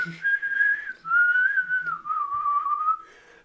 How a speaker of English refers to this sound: I kind of get stuck on the slide whistle.